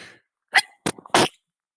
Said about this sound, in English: I think I'm finna sneeze, y'all.